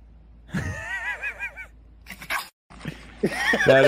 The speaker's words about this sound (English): Man, when Pomeranians bark, sometimes they sound like they've been smoking too many cigarettes. Have you noticed that?